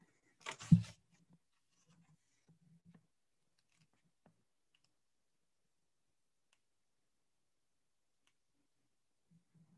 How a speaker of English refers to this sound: Turning pages is hard when you don't have thumbs.